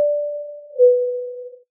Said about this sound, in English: There it is, the double chime that indicates a question from our audience, from you all out there for the examiner.